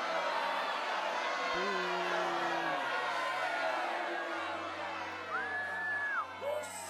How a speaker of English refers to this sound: What are you booing me for?